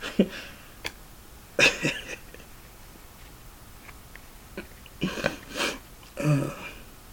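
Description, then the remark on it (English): Several breathy sniffles and short coughs come in irregular bursts, with quiet pauses between them and no talking. “I got sniffles.”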